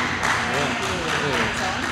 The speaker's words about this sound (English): Oh, those applause sound nice in the tunnel, don't they?